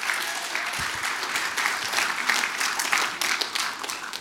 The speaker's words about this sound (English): Why don't you give them a round of applause as they come out?